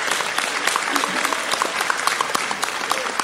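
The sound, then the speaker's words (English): Steady audience applause at a convention for the visually impaired, thanking the people who organized it, a dense patter of many hands clapping at once with sharp individual claps poking through, sustained at an even level throughout without any voices. “So how about a round of applause for them?”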